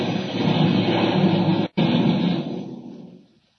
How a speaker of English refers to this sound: There. I crashed the planes.